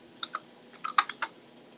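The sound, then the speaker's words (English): A handful of sharp, clacking keystrokes on a clicky keyboard, struck in an irregular burst against a quiet background with no talking. “Who's working on the old school typewriter?”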